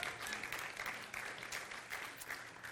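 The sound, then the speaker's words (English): A crowd applauds a four-year anniversary steadily, many hands clapping in a dense, continuous patter that holds at an even level throughout, with no voices standing out. “And I've had, we can applaud that.”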